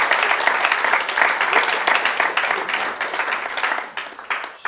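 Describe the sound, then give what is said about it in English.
A crowd applauds, a dense, steady wash of many hands clapping at once that stays loud for several seconds before thinning slightly at the end. “You should applaud for that.”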